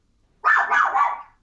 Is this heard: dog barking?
yes